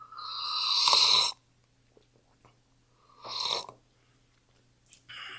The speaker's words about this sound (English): The first sip, you always got to get used to it again.